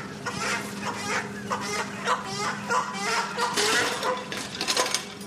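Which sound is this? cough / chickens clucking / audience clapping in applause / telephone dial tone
chickens clucking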